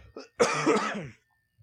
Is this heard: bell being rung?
no